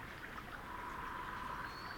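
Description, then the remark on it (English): A meltwater brook beside a subalpine meadow surrounded by forest flows steadily, with a continuous soft rush and light bubbling texture, at a gentle, even level throughout with no voices. “I pull to the side of the road and hike along a meltwater brook as a woodpecker drums softly in the distance.”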